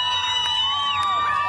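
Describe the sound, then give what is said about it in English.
A large unarmed crowd chants "Go home" at Russian armored vehicles in the main square of the southern city of Kherson, many voices in loud, sustained, overlapping tones that rise and fall. The sound stays steady for the whole short stretch, with no single voice standing out. “Unarmed crowds chanting "Go home" managed to turn back Russian armored vehicles in the main square of the southern city of Kherson.”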